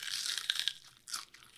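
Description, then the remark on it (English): A crisp crunching of someone biting into celery, with a burst of sharp cracks followed by a second crunchy chew a moment later, no voices present. “Celery. Wow. It is crunchy.”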